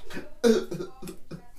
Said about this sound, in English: I can smoke some weed. I can cough.